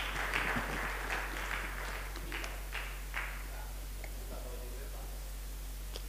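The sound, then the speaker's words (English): A crowd applauds a man with a burst of scattered clapping that thins out and fades after a few seconds, over a steady low electrical hum. “Can you clap for this man, please?”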